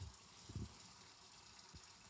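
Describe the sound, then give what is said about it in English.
Hot water runs steadily from a tap into a bucket, about 5 liters, to mix powdered brewery wash; a continuous soft hiss with a couple of low bumps and knocks underneath, fairly quiet. “Now I can't turn off the tap.”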